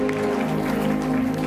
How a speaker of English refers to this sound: Give the Lord a clap offering, somebody. The way you are clapping.